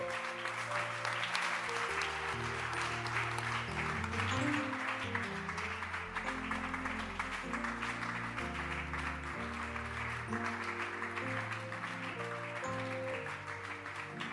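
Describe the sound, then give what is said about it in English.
An audience claps steadily and continuously, a dense wash of many hands applauding together, with music playing underneath throughout. “Clap for them.”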